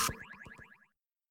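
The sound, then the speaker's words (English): A short Coca-Cola advertising jingle: a sharp opening hit followed by a quick run of bright, bouncy, sliding tones, lasting under a second with no voices. “And obviously you heard a little jingle there of Coca-Cola that we were gratefully sent to us by Guy Bogdanov from Siconian Speed.”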